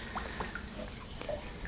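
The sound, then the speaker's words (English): Bath water dripping softly, a handful of small, irregular plinks scattered over a quiet, steady background hiss, faint. “Is the water to your liking, dear? I can have the slave bring more hot.”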